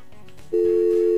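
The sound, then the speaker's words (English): A steady telephone line tone, heard while connecting a call, cuts in abruptly about halfway through and holds unbroken to the end, loud, after a brief stretch of quiet background with no talking. “And I just have a phone call and that just made my mind go, whoo! Okay, let me just get a hold of them.”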